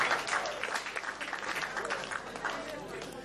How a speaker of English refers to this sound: Chale, clap for yourself. You have been doing well.